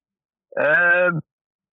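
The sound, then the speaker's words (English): A single voice makes a silly T-Rex noise, one loud, nasal, groaning bleat lasting under a second at a fairly steady pitch, standing alone with silence on either side. “What's the worst noise a T-Rex could make?”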